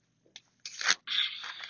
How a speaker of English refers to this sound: Sorry, I need to get a little sippy sip.